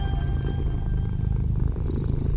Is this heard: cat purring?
yes